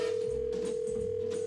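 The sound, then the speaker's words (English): A steady electronic telephone tone hums without a break as a call is placed to a woman, heard clearly over faint background noise with no one speaking. “So let's call her up, get her on the phone.”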